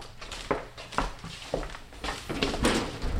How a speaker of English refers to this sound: walks to one of the cabinets and pulls open a drawer.